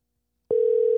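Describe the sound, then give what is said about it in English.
After a moment of silence, the steady electronic ringing tone of an outgoing phone call starts and holds at an even, clear level to the end, with no one speaking. “so we should be heading into that phone call very soon. Let's see if he answers.”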